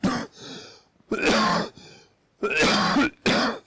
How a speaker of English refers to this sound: I'll stop him before he coughs over all of you as well.